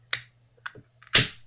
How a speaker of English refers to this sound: I was waiting to do that. That was a straight can pop. I was waiting to do that.